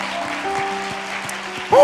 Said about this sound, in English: Clap your hands unto the Lord, somebody.